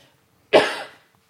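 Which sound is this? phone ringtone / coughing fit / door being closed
coughing fit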